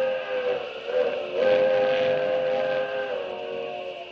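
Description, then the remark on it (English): A train's steam whistle blows in a long, sustained chord, swelling louder around the middle and holding steady as the train draws near, with no voices present. “He's waiting for the train. Gonna blast it right off the tracks.”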